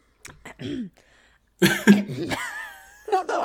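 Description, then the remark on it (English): Someone clears their throat, two rough, raspy bursts separated by a short pause, followed by a brief voiced sound; no words are spoken. “I chose the worst time to clear my throat, and I was like, "This has to be the bit now."”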